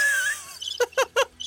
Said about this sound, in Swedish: Men ska vi sluta med... Ska vi sluta med lite fågelsång?